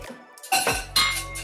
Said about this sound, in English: Drink, motherfucker, drink, motherfucker, drink. Clink.